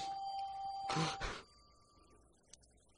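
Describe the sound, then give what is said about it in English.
A faint electronic phone ring, a steady high tone lasting about a second and a half with a brief rustling burst partway through, then fading into quiet room hiss. “So that's not creepy that the phone rings here when we're talking about a killer calling.”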